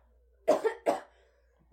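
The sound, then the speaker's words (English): Two quick, harsh coughs, the second following right after the first, with near silence around them. They sound like someone deliberately acting out a cough. “Cough. You start coughing.”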